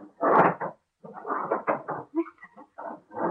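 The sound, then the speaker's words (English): Heavy furniture scrapes, bumps and squeaks as a man shoves it against a door to barricade it, in several rough bursts with short pauses between, and no one speaking. “You hear what he's doing? Barricading the door.”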